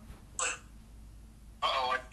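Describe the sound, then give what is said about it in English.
A phone hits the ground with a short clatter, followed a moment later by a longer scuffling knock as it's handled, with low hum in between. “Yeah, I full dropped my phone, like, on the ground.”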